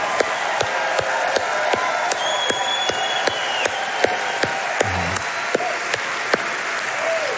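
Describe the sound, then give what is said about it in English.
An audience claps during worship in a steady, even rhythm, sharp beats landing roughly twice a second over a continuous wash of crowd noise and cheering, loud and sustained throughout. “The Power of Clapping and Shouting”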